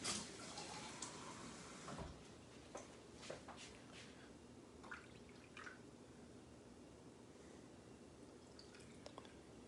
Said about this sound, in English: And then add the room temperature water here. I'm just gonna heat up the water. This was in the fridge. So I'm gonna get some kind of room temperature water here. All right, a little bit more.